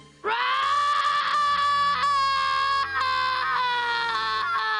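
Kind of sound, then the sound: vocal imitation, person imitating a roar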